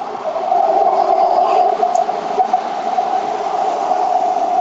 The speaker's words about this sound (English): I think there's a train coming. Hold on.